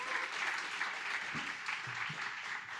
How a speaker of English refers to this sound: Would you just give Clinton Baker a round of applause this morning?